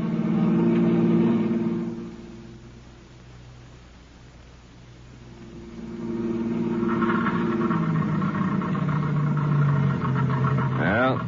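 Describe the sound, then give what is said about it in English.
A car engine drones loudly, sags and falters to a weak rumble, then surges back unevenly as it runs low on gas, ending with a brief rising whine. “The end of the gas.”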